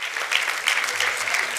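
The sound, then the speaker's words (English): A church audience gives an applause of thanksgiving to God, a dense wash of many hands clapping steadily at an even, fairly loud level with no distinct individual claps standing out and no voices speaking. “Let's take one more minute and just give him a tremendous applause of thanksgiving.”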